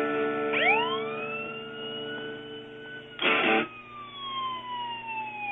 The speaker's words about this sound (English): Wait, what is that? Oh, no. I'm hearing a siren. Oh, jeez. What's going on?